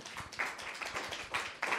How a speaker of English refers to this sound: It sounded like a pre-recorded sound clip titled "Sad Applause Dot Wave."